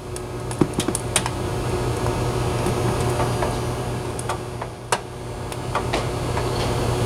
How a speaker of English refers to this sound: Now, the crackling that you hear in the background is actually the expansion of the metal on the grill.